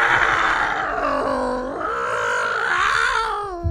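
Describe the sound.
A man's voice imitates cats yowling during mating, a continuous wavering wail that slides up and down in pitch, loud and unbroken for nearly four seconds.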